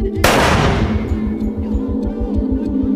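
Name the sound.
gunshot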